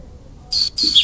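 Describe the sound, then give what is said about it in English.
Bright, high-pitched bird chirps come in two quick bursts, clear over a soft low background hum, with no one speaking. The birds are outside a window on a lovely day in Arlington, Texas. “It's a lovely day here in Arlington, Texas, as I look out the window and see the birds smile.”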